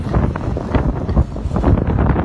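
Strong wind buffets a microphone outdoors on a cold day of about 6 degrees, a continuous low rumbling roar with gusty surges and irregular thumps, loud throughout with no speech.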